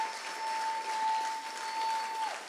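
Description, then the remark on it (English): An audience claps steadily for a couple of seconds for people coming to the front for prayer, a dense wash of many hands at a fairly even level, with a single sustained keyboard note held over it. “Go ahead and clap for them as they come.”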